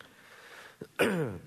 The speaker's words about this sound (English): You have to pardon my cough. I'm sorry about that, but, you know, don't judge.